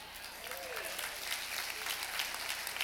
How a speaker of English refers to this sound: And I'm glad you're clapping because check it out. You were a part of that.